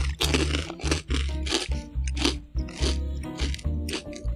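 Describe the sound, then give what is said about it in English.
Loud, crisp crunching of people chewing fish-flavored crackers, with repeated crackly bites in an uneven rhythm over a low steady hum, no talking. “I'm sure there's some people that will just turn off your podcast because we're chewing in their ears now.”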